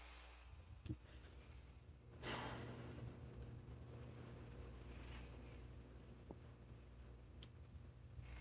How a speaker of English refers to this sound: But something that seems to be magnified is the labored breathing